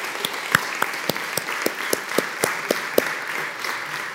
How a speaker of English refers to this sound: Let's give to God an applause.